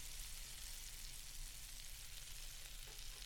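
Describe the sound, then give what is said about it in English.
Eggplant and ground turkey sizzle and crackle steadily in a hot pan, a dense continuous hiss with a low hum underneath, fairly quiet and unchanging throughout, with no voices. “So throw those things together and yeah, we'll see if anything edible comes out of this.”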